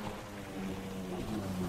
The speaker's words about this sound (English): Do you hear that? Is that a jet ski? Oh my god. Is that the pizza? It is.